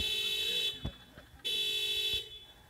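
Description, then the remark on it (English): A car alarm blares outside in long, harsh honking bursts, two blasts separated by a brief gap, with some background noise. “Is that your car?”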